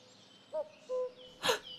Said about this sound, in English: Wow! Is that a cuckoo bird? It sounds like it. Isn't a cuckoo a clock? It is, but it's also a bird. That's where the clock got its name from. Oh. They have such a wonderful call.